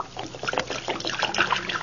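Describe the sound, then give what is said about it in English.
Liquid floor wax (Johnson self-polishing glow coat) glugs and trickles steadily onto a floor, a continuous pouring sound with small splashy bursts, lasting a couple of seconds with no one talking. “You just pour it out, do you? Yeah, like this, see?”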